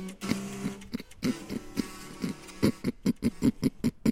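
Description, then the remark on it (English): A person imitates a pig's oink by sucking air through a part of the throat while closing it, a string of short, snorting grunts, a few spaced out at first and then quickening into a rapid, steady run of oinks. “That's supposed to be a pig.”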